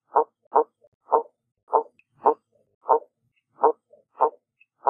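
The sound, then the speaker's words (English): A piranha gives a series of short, gruff barks, about nine low knocking pulses in a loose, uneven rhythm, moderately loud against silence. “That was a piranha. Did you know they make that little bark noise?”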